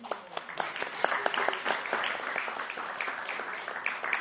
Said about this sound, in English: Big thanks again to those devotees who came yesterday for the Marathon Festival, the Book Distribution Festival. If you didn't go out on Sankirtan during December, can you give them all a round of applause, please?